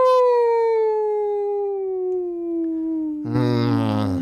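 A single long wolf howl holds steady and slowly sinks in pitch for about three seconds, then several more howls burst in together, forming a loud, clustered chorus at the end.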